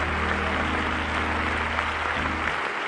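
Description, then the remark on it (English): A crowd claps steadily, giving a hand clap of praise to the Lord before being seated: a dense wash of applause with a low musical hum underneath that drops away near the end. “That's right, give the Lord a hand clap of praise before you're seated today.”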